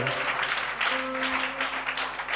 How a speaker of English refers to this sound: Amen. Bless you so much. Amen. Let's give the Lord a clap of praise. Amen.